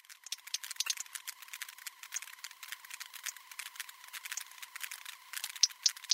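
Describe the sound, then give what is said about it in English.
Sperm whales echolocating: their clicks crackle continuously like popping corn, dense and irregular, with a faint steady whirring boat engine drone underneath and a few sharper, louder clicks near the end. “So in that recording, you not only have whales echolocating in the background, which is just kind of the popcorn-y underlying sounds, but you also have boat noise, which is that sort of whirring engine noise.”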